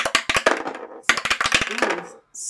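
Dice clatter across a hard tabletop in two quick bursts of sharp, bright clicks and rattles, with a brief high jingle at the end, as two players roll to decide who goes first.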